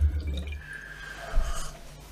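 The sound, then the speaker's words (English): Rum drips slowly from a bar optic, a soft liquid trickle with a faint ringing tone, over a low background rumble and no voices. “Oh, it fucking worked, didn't it? It's just going to drip now, though, isn't it?”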